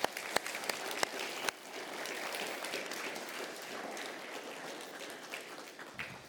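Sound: church audience applause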